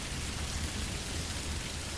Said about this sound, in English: So, I'm getting totally wet. But you know, it's not that bad at all. bringing back sweet memories of when I was young and free and took so much joy in playing in the rain. Oh, what a delight.